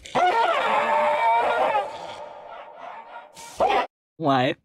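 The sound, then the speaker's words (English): A German Shepherd gives a long, strained whining bark, then two short, loud barks, the last one sharp and clipped, with brief silence between them. “Yeah, that's a German Shepherd, and I want to say a Volvo S70.”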